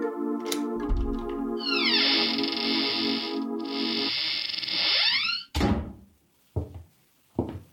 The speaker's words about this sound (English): Took the elevator up to the 10th floor, found the right door and slipped in with a passkey.